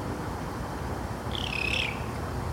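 A raccoon, one of several that came out before dark, lets out a single thin, high-pitched squeak at the person recording, lasting about half a second and wavering slightly in pitch, over a steady low background hiss. No one speaks.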